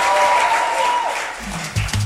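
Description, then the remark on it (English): An audience at a First Love London church service claps steadily as people take their seats after a prayer, a dense wash of applause that starts full and tapers slightly, with a faint tonal hum underneath and no speech. “Put your hands together as you take your seats.”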